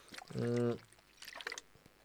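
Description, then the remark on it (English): Slurping of a drink of water, with a brief voiced hum in the throat followed by a few small wet clicks and swallowing sounds. No words are spoken. “Sorry, I'm just having a slurp of my water.”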